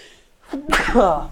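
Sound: sneeze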